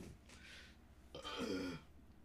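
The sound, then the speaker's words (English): A brief, faint throaty sound is followed by a longer, louder guttural rasp, like a burp held back in the throat, with no talking. “Sorry, I have burps in my throat.”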